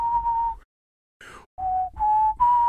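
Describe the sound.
Someone whistles a short melody, a few sustained pure notes with a brief gap and a quick sliding note before the tune resumes. No talking.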